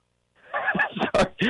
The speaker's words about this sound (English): I stepped on my dog's squeaky toy. Okay. Sorry about that. I'm a mess.